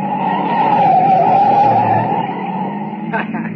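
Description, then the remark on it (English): Car tires screech in one long, loud, wavering squeal as a light car doing about 70 swerves through a sharp right turn, almost going over, with a low engine rumble underneath and a few brief knocks near the end. “Baby, look at her take that right turn, huh? She almost went over. That's a light car she's got.”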